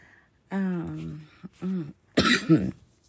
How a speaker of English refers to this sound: Yeah, so this is going to be quick because I don't want to be coughing in y'all's ear and doing all that.